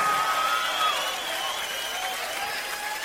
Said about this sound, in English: Nice round of applause if you would for the …, ladies and gentlemen. They're the best band on the road, I think, anywhere.